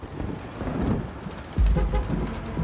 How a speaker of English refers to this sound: The drizzle continues to fall over Buenos Aires, accentuating the gray of autumn, which clings to the streets, the cars, the people.